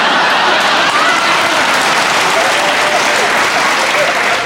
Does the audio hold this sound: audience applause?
yes